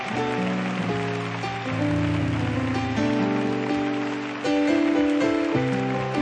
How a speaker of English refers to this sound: Set your Bibles down. Clap your hands one more time like thunder. Clap your hands like thunder for what the Holy Ghost is about to do.